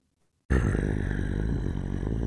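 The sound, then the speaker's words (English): After a brief silence, a loud, deep growling of wolves with glowing red eyes and dark fur starts abruptly and rumbles on continuously, menacing, with no speech over it. “You now see them as they walk past William and hear the growls.”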